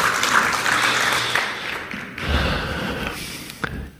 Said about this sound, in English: Can we give him a round of applause, everyone? Thanks, buddy. Thanks, brother. Thanks, man.